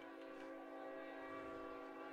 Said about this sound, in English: Train coming through in the background.